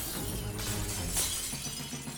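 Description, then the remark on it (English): A glass office door shatters with a loud, bright crash as a man fighting in Goldfield falls through it, followed by a sustained spray of tinkling, scattering shards that keeps ringing for about two seconds. “Then, as Lyman tried to escape, he crashed into Rice's glass office door, falling through as it shattered into thousands of crystalline pieces.”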